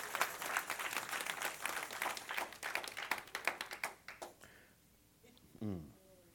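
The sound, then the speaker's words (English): An audience breaks into a hand clap of praise, dense overlapping applause for about four seconds that thins out and fades, followed by a brief voice calling out. “Come on and give him a hand clap of praise in Jesus' name.”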